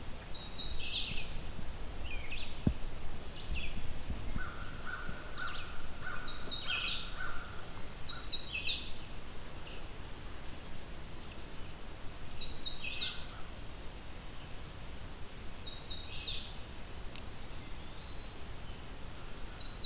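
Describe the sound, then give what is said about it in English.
A hooded warbler sings several short, bright whistled phrases spaced a few seconds apart over a steady outdoor hiss, with a softer lower call drifting in between. “This makes it a four hooded warbler weekend, which is pretty interesting.”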